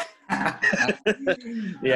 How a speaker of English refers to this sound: I'm just going to cough one more time just to make sure.